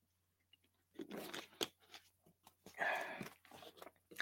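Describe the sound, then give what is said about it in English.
Someone quietly takes a drink of water: soft sips and swallows mixed with small mouth clicks and brief crunchy rustles, faint and irregular, with no talking. “I'm just going to have a little drink of water here.”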